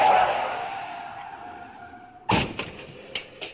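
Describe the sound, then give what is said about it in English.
A loud, drawn-out tire screech fades for about two seconds, then a sharp crash hits, followed by a few scattered clattering impacts of debris. The car crash effect plays alone, without speech. “A horrible car accident.”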